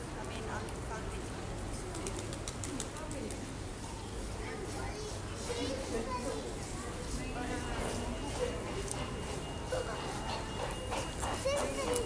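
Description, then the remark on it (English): An audible pedestrian road crossing signal, which sounds when traffic stops for a red light, beeps in a quick repeating pattern over steady street noise and passing traffic in light rain, with voices murmuring in the background. “That bleep bleep bleep noise you can hear is the noise of the road crossing.”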